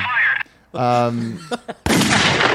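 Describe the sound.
A person vocally imitates drive-by gunfire: a few voiced, buzzing bursts and sharp mouth pops, ending in a loud, sustained hissing spray of noise.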